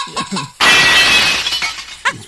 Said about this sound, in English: That's broken glass.